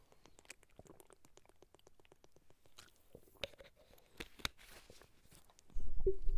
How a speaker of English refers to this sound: So let me get a drink here.